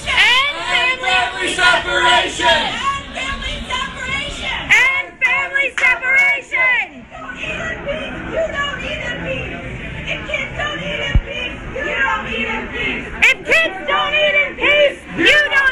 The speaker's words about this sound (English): all these dozens of people walk into this restaurant, start yelling at her as she's eating dinner. It sounded like this.